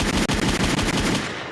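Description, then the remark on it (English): A rapid burst of machine-gun fire sound effect, dropped by a DJ, loud, with evenly spaced sharp shots rattling off in quick succession before trailing away at the end. “Quick gunshots, getting all the shots off. Rat-a-tat-a”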